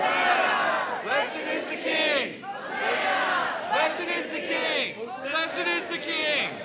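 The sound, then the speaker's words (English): A large crowd in Des Moines shouts loudly in unison, in call-and-response chanting cued by which side the leader points to: three long phrases of many voices rising and falling, each separated by a brief dip. “With the palms, with the loud voices, let Des Moines hear you.”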